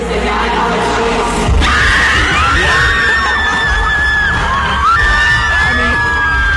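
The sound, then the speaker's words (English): A packed concert crowd screams and shrieks continuously and loudly, with many high voices overlapping in a dense roar and a sudden surge of noise partway through. “You know what's crazy is you know what's going on there because everybody is screaming”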